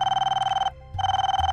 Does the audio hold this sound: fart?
no